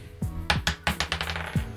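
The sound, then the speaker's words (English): Dice clatter and tumble across a table in a quick series of sharp clicks and bounces, fairly loud, settling after a couple of seconds. “Oh, yeah, that lucky dice.”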